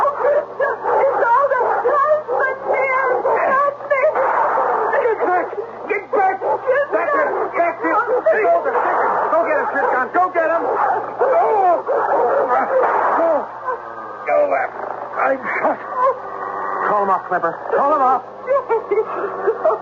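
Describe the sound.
A dog barks and yips repeatedly amid a busy, continuous stretch of sound, its bursts mixed in with people talking over a slightly boxy, broadcast-like background hum.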